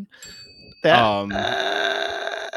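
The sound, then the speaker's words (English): A single bright chime from a little bell rings out after a brief vocal sound, its clear tone holding steady for about a second before cutting off. It sounds fairly loud. “chime when we have the little bell.”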